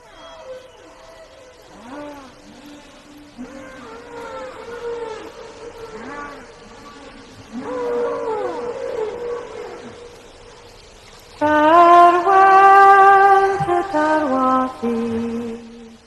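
A song's opening: eerie, sweeping moans and whoops like whale calls, rising and falling in pitch over several minutes-long phrases, swelling into a louder, richer harmonic passage near the end, with no talking.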